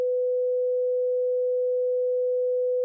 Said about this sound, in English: So here's what a 500 hertz sine wave sounds like.